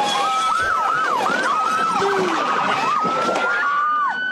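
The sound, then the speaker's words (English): A police siren wails loudly as a police car pulls up to a protesters' barricade of signs in the middle of the road, its rapid up-and-down yelp sweeping repeatedly over steady traffic noise, with a second, lower siren tone briefly joining in. “Because as you see the cop car pulling up and they've got their little thing in the middle of the road with their signs that are built up, cop car, boom, right through it.”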